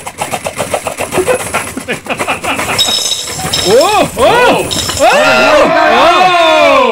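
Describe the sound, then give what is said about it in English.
A rapid stream of bright metallic clinks as about 50 gold coins are poured from a box into a dish, rattling for a few seconds. Then excited, rising and falling voices take over while faint clinking continues underneath. “You want to hear a lot of gold coins rolling into this dish.”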